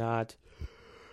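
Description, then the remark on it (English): A voiced yawn on a sleepy morning trails off in a low drawn-out tone, then ends with a quick breathy exhale and a soft low thump, followed by quiet. “I apologize for yawning.”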